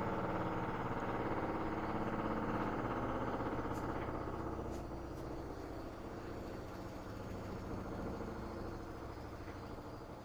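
A loud clothes dryer, its adjustable feet out of adjustment, runs steadily on laundry day, a dense droning rumble with a rhythmic tumbling texture and a few faint clicks, holding at high volume throughout without any talk.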